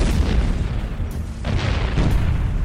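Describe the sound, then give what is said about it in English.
Heavy artillery fires and shells explode on a small village at night, booms in quick succession, deep rumbling blasts overlapping into a continuous low roar, with sharper bursts cutting through every half second or so; loud, no voices. “Artillery shells began raining down on the small village, lighting up the night like fireworks.”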